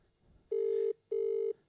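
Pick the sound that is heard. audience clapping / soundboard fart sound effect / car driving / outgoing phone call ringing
outgoing phone call ringing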